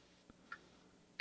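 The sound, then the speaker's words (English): A few sharp computer keyboard clicks, spaced unevenly over about a second, crisp against a quiet background with no voices. “Just broke my keyboard.”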